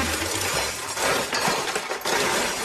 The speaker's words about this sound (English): I like that one better. Okay. That seems like a junk garage. I think there's silverware in there. That is silverware.